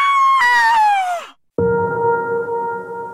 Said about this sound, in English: The cleaning woman finds Mona's dead body and screams.